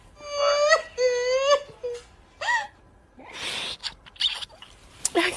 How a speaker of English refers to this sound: I can hear her yelling. And you just see the guns at the back of her head.